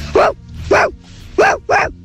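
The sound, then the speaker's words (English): A child's voice imitates a dog barking, four loud woofs in two quick pairs, with short pauses between them and no other talking. “Here's my impersonation of a dog.”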